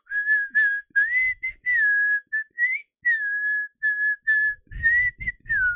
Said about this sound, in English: Did you hear that? I was whistling along. I didn't hear anything. I was just whistling.